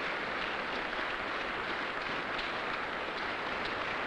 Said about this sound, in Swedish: Först när hon går fram till podiet börjar publiken applådera.